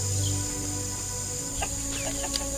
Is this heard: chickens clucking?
yes